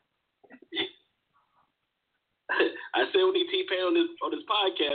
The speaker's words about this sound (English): Oh yeah, it's a hella reverb and a little bit of auto tune.